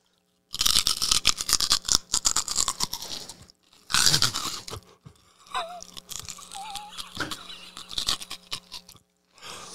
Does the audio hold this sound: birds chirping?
no